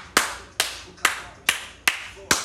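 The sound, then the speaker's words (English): Hand clapping: six sharp, crisp claps in a steady, even rhythm, each a bright burst that fades quickly. No voices or other sounds accompany them. “Single dads, give yourself a hand clap.”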